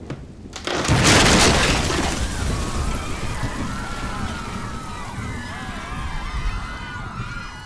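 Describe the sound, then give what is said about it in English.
The roof of the Red Pig tears away with a sudden loud crash and rending burst, followed by a sustained roar of rushing debris and wind laced with high, wavering whistles. “As they were carting him away, the roof of the Red Pig got ripped off.”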